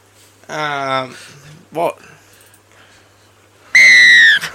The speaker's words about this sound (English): Blow the whistle. Blowing the whistle.